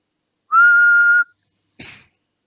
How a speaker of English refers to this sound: Was that you? Yeah, mate. Was that you whistling? Was it that bad? No, that was good. But I thought it was like a computer.